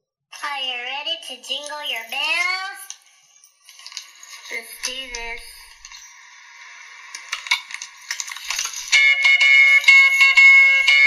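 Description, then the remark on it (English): In an old YouTube video, a voice sings briefly, then small jingle bells on a woman's wrist shake in a bright, continuous metallic jingle that grows louder and denser toward the end. “Oh, got some jingle bells on her wrist.”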